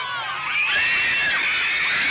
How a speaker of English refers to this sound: They went turbocharged to a whole nother level of insanity. Listen to what it sounds like. You can hear the tonality of a scream change. Okay, they're showing up. Listen to them yell.